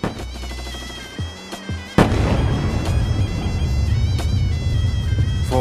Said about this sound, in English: Night of 13th to 14th of July, 2006, 4 a.m. The Israeli Air Force flies over Beirut. Far away, we hear bombs falling down. Silence. We begin to hear shots far away.